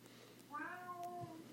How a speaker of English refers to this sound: Oh, can you hear my kitty?